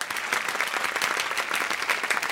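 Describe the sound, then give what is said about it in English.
A studio audience at a dress-rehearsal taping applauds loudly on cue from the applause sign, a dense wash of many hands clapping at an even, sustained loudness with no voices over it. “Okay now, when the applause sign goes on, I need you all to applaud loudly.”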